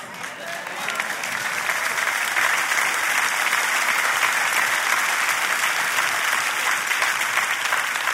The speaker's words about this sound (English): Y'all are clapping at me, but I'm saying it to you.